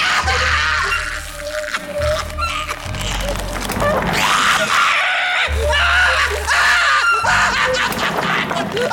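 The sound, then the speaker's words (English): A man screams in agony, long ragged cries broken by short gasping pauses, loud, with a low rumbling drone running underneath throughout. “I'll just be over here with the mopping up and ignoring the screams.”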